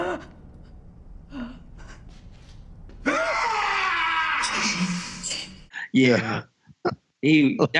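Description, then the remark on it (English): A character's loud, drawn-out anguished yell when Angie gets shot erupts after a quiet stretch, straining and wavering for a couple of seconds before cutting off; people talk briefly afterward. “Do you remember his yell at the end when Angie got shot?”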